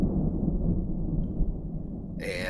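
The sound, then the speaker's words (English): A soft, low rumble of thunder rolls steadily for a couple of seconds, muffled, before a brighter, sharper noise cuts in right at the end. “As we kind of cut from you doing one thing to you doing another and another and another, we finally end with a cut with you sitting next to Adelaide, her in bed, and we hear the soft rumble of thunder overhead.”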